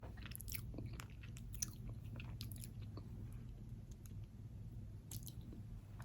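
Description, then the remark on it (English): Wet chewing and biting on soft, squishy ice cream, with ice cream coming out of both sides of the mouth, irregular smacking clicks repeating over a low steady hum, no talking. “I save this till the end so that the people who don't like mouth and chewing sounds and things like that are either asleep or can go.”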